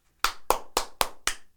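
Five sharp hand claps in quick, steady succession, close and fairly loud, each with a brief ringing tail, with no one talking.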